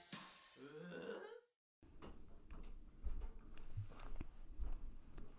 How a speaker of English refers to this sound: You hear that? That's my mother-in-law upstairs stomping around.